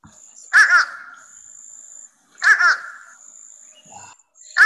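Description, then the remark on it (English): A crow of a kind sometimes called the uh-uh bird gives a nasal two-note "uh-uh" call, repeated three times at roughly two-second intervals, clear, with a faint steady high tone in the background. “It's actually another kind of a crow, and I've heard people call it the uh-uh bird because it sounds like it's saying uh-uh”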